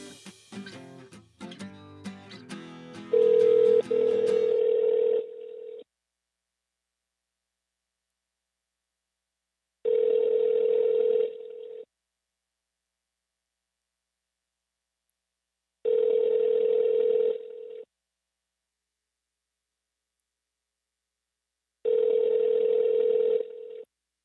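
A phone line rings four times, each steady two-second tone separated by about four seconds of silence, after a brief jumble of clicks and tones at the start. No one speaks before voicemail answers.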